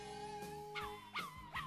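Dog barks pitched to follow a melody, three sharp yelps in a steady rhythm over sustained tonal notes, like a pop tune performed by barking dogs. Fairly loud, with no talking.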